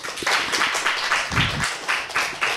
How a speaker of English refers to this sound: Oh, okay. We'll do old fashioned pep rally style. If you want the vagina song, clap now.